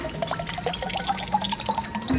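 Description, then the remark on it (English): Gasoline is poured into a bottle, a steady splashing trickle with bright, bubbly glugs and drips throughout, the pitch rising slightly as it fills; no voices. “Pour in the gas.”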